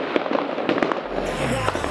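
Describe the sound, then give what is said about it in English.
Fourth of July weekend fireworks in a residential neighborhood crackle and pop in rapid bursts, several sharp bangs in the first second giving way to a steady roaring rumble, moderately loud, with no voices. “There are things happening out there, and the fireworks are nonstop in my neighborhood, putting on quite a show, and I'm excited to get out there and enjoy this weekend.”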